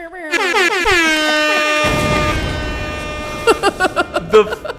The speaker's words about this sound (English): Hold up, let me get some air horns.